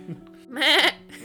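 A single wavering, goat-like bleat lasting about half a second, loud, made by a human voice imitating a goat, with a low steady hum in the background.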